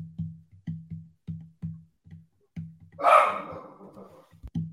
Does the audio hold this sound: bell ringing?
no